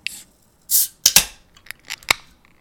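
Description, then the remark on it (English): Beverage cans cracked open: sharp metallic snaps with short bursts of hissing fizz, followed by a few lighter clicks and rustles. No one speaks. “Well, let's crack these bad boys open.”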